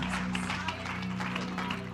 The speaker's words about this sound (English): So, son, come on. Come preach to us. Let's give our youth pastor a hand. Let's give some praise to the Lord.